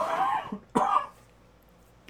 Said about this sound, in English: I'm going to cough. I'm going to back away from the mic.